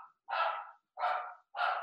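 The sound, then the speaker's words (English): A pet dog named Nacho barks three times in a steady rhythm, each bark loud and sharp, with short silent gaps between them and no talking. “I think the dog's got a view on this one.”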